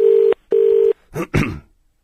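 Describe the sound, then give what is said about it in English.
Two steady, evenly spaced electronic telephone tones beep in quick succession as someone dials to call a man back, followed by a pair of brief, noisy crackling bursts. No one speaks. “Let's call him again.”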